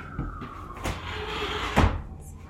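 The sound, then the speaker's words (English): A window slides shut with a grinding rumble, a couple of knocks and a final thud near the end, fairly loud with no talking. “So for starters, let me close my window.”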